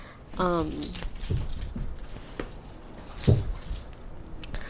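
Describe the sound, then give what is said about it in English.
An excited dog lets out a short, high whine, followed by scattered scuffling, rustling and jangling noises as she tugs and tears at a blanket. No one speaks. “Sorry, my dog is going crazy. Okay, I'll let her destroy this blanket while I record this.”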